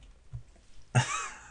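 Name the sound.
woman sneezing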